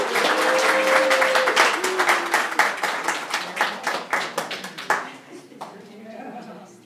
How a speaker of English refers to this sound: Give him a hand. Yay. Let's clap.